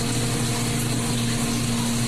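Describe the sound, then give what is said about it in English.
A dishwasher running in a kitchen while the dishes are cleaned, giving off a steady, unchanging low hum with a constant whooshing wash of noise over it, and no voices. “Knocking on heaven's dishwasher door”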